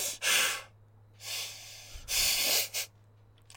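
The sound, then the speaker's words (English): A voice imitates a character's heavy breathing: three loud, airy breaths, with pauses between them and a short extra puff at the end. No words are spoken. “There's also a lot of breathing. I underestimated how much Tony Soprano just like.”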